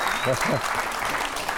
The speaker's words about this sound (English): Oh, thank you very much, everyone, for that wave of applause. Which is very enjoyable indeed. Thank you.